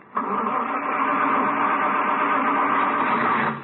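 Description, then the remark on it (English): An old car, left outside overnight in the cold, cranks and catches, a rough, steady, fairly loud mechanical roar that kicks in abruptly and runs for a few seconds before cutting off. No voices are heard. “I knew I should have walked. Darn old car.”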